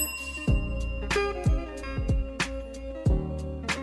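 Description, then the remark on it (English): A hand bell rings repeatedly in an uneven rhythm, each clang bright, with its metallic tone lingering and overlapping between strikes. No one speaks. “Honk your horn for me while I ring my bell for you.”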